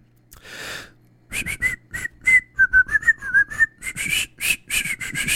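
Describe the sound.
A person whistles a short, wavering tune, the notes airy and breathy with puffs of air between them, opening with a sharp intake of breath. No one talks.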